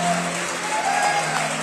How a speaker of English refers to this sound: warm round of applause for our vocalists